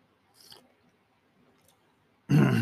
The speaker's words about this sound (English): And just a second, I'm going to take a drink of coffee.